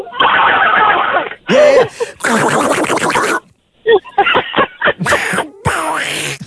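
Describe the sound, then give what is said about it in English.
A voice imitates Donald Duck when he's really mad, spitting out a run of loud, raspy, sputtering squawks in uneven bursts with short gaps between them. “You sound like Donald Duck when he's really mad and he goes...”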